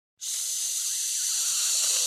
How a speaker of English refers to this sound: And Joe and John and Rosie all climbed on the sledge and swooshed down the hill.